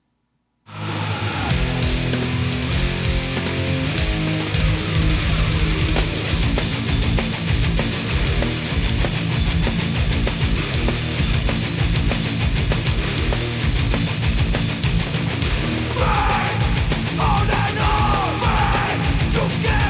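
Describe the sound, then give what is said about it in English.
A loud, dense heavy metal song about following one's faith kicks in almost immediately, with distorted guitars, pounding drums and yelled vocals, shifting into a different riff about three quarters of the way through. “this is a very heavy song about following your faith and acknowledging how personal it is”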